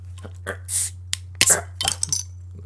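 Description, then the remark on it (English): Metal bottle caps pop off with a few sharp clicks and clinks, each followed by a short airy hiss, over a steady low electrical hum. “All right, so let's crack these open.”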